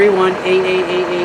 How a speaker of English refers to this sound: Can you turn your truck off? that old school diesel too. I know, right? Sorry guys, it's like diesel FedEx van truck.